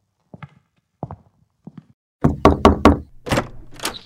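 Knocking on a door: a few soft, sparse taps at first, then a louder run of about six firm, hollow knocks in an uneven rhythm. No one speaks.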